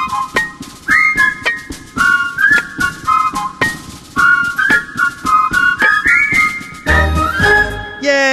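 people whistling

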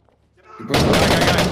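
gunshot

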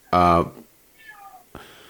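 cat meowing

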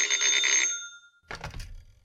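telephone bell ringing

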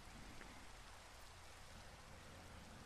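rain

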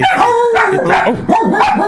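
dogs barking and howling

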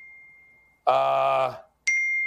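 phone notification ding

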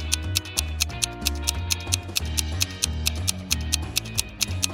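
clock ticking

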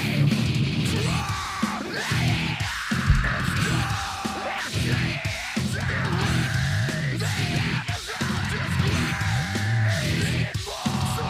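screaming vocals

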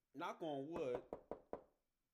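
knocking on wood

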